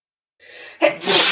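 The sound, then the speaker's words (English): A single loud sneeze: a breathy intake rising in pitch, then a sudden explosive burst that trails off into a noisy exhale. “Excuse me. Bless you.”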